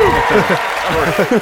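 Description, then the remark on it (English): Steady audience applause, a dense wash of many hands clapping at an even level, cheering news of a new cooperating witness in Robert Mueller's grand jury investigation, with a voice speaking over it throughout. “So this people come out on their evening to applaud the minutiae of an ongoing grand jury.”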